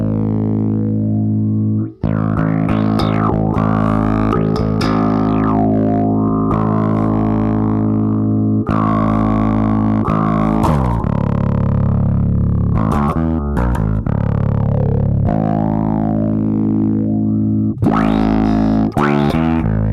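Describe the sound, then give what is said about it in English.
A bass guitar runs through a resonant filter set halfway between envelope and LFO modulation, its tone sweeping up and down in squelchy, vocal-like wahs as notes and short riffs are played, loud, with no talking. “You can go halfway between envelope and LFO and get both. Oh, it really is a lot like the Pictronix envelope phaser.”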